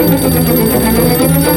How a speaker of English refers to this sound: Sir, the telephone. Hello?